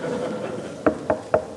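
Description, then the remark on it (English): Four sharp knocks on wood in a quick, steady rhythm, fairly loud, following a moment of soft background noise. “Knocking.”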